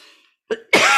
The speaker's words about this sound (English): Oh, I'm telling you, my cough has not been that bad today. I don't know what's going on here.